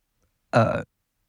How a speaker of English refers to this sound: This is like weak-ass burps, man.